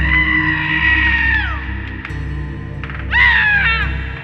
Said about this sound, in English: Around 30 minutes later, again, the family were alerted to blood-curdling screams that came from the room.